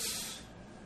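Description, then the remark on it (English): A single sneeze, a sharp breathy burst of airy hiss that is loudest at the start and quickly trails off into a softer exhale. No talking accompanies it. “Bless you”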